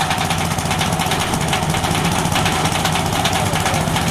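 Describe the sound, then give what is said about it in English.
A corn shelling machine's engine runs steadily and loudly, a dense rumbling drone with a fast rattling vibration that continues unchanged throughout, with no voices. “They've also created a corn shelling machine, but how does it work?”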